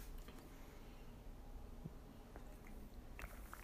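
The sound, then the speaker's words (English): Quiet mouth sounds: a few small wet sips and swallows of coffee from a cup, spaced out over a few seconds against low background hiss, with no talking. “Hold on a second to pause for a brief coffee sip.”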